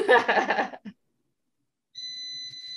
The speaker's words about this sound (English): Is that an alarm? It's my, don't judge me right now. It's my air fryer. What do you got, chicken nuggets in there? That one in. I'm going to throw some dino nugs in there. Tater tots. I know there's a couple tater tots in there too.